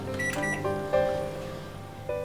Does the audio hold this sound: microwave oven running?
yes